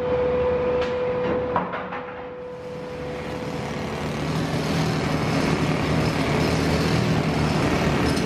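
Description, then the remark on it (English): A steady industrial hum and a few sharp metallic clanks give way to a loud, sustained roar of scrap metal, such as shredded automobiles and railroad wheels, pouring and crashing down as magnetic cranes dump it into massive hoppers at the Charter Steel plant in Saukville, Wisconsin. “At the Charter Steel Plant in Saukville, Wisconsin, just outside of Milwaukee, magnetic cranes scoop up giant fistfuls of scrap metal and dump them into massive hoppers.”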